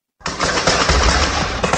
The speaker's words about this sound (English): Six members of the Greater Victoria Emergency Response Team are in hospital following an exchange of gunfire at that Bank of Montreal branch in Saanich today. Here's eyewitness video of the scene. You can hear just how chaotic it was.